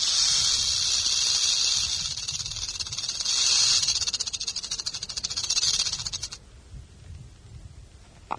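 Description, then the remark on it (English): A rattlesnake's dry, high-pitched buzzing rattle whirs steadily for about six seconds, swelling slightly and pulsing rapidly, then cuts off abruptly, leaving quiet background noise. “We found a small lake, some badlands, and a rattlesnake.”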